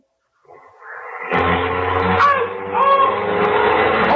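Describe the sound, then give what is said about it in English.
A car engine sputters to life after a brief silence, then revs up into a loud, steady roar that surges again as it pulls away, with no voices. “Say, George, when you started the car, you bumped into him.”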